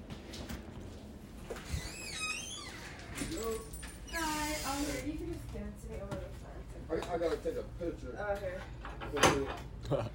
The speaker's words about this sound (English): They're trying to open this shit. Oh, they are? Yeah, they're trying to open the door.